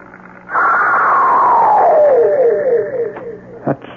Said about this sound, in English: Well, did Mr. Perkins get a recording of this shriek? He did. He gave it to me here in his tape machine. Could we hear it? Certainly.